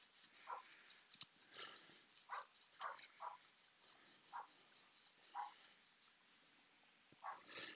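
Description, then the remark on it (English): A dog barks repeatedly in short, irregular bursts, about eight or nine barks, sounding faint against a quiet background with no one talking. “is just a bark nut.”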